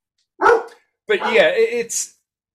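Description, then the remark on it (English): A dog barks: one sharp bark, a short pause, then a longer, drawn-out burst of barking and yelping that ends abruptly. “I'm sorry, my dog's barking.”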